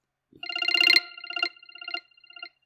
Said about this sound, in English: Some of them are just garbage, but that one just now was like, that's just a straight ringtone. Yeah. It's like a weird one, though. I would want a more normal ringtone, I feel.